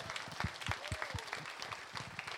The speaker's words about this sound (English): and also a big round of applause for Tommy Moran. What a job all day.